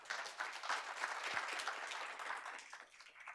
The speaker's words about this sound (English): It's nice to get applause before. It's nicer to get it afterwards.